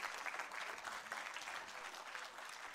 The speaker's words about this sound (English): It says, they still bear fruit in old age. So let's applaud the gray-haired person that's sitting next to you.